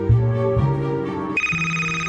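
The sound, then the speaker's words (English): A telephone rings as the bully calls Cool Cat, with a loud electronic ringtone: steady, buzzy tones that step up in pitch partway through, playing alone with no talking. “He's now, the bully is calling Cool Cat.”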